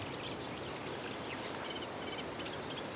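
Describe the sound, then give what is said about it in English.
Faint chattering of reed warblers in a reed bed over a steady rustle of wind through the reeds, the scratchy song fragments repeating loosely throughout. “And it's full of reed warblers.”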